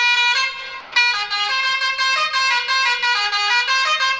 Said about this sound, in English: A lot of people in India have really cool horns, and I highly suggest you invest in a truck horn. And if I can get my editing right here, you should be hearing an Indian truck horn right now.